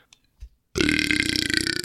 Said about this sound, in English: That was a good burp. But it'll sound a lot like maybe a burp on the mic.